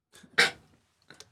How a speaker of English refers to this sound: What happened? Bless you, my guy. Thank you. That was a sneeze? Mm-hmm. Bless you, shit.